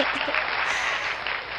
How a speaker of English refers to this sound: Clap. I'm gonna clap.